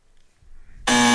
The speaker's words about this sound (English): Hold on, where's my buzzer? I got to get my buzzer for this one.